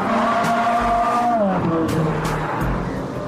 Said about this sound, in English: My commuter car, so I drive it every day to work. Most people buy car and keep it in the garage. I drive them every day.